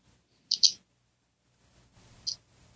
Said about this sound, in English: These birds in the background, though, need to respect the conversation that's happening.